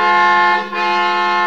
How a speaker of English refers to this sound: What are you honking now for? He's gone. Your horn. What about it? Oh, nothing. I thought I'd heard it before.